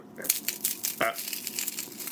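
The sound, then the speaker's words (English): A steady, irregular crackling fills the whole moment: dense, dry crinkly pops and snaps with a brief louder burst partway through, moderately loud and with no talking over it. A person makes the crackling noise out of nothing, as a hobby. “You just make a crackling noise out of nothing?”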